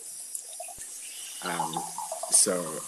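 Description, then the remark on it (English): Water runs steadily from a tap as someone gets some water, a constant hissing flow, with a person's voice briefly speaking over it near the end. “Just grabbing some water, sorry.”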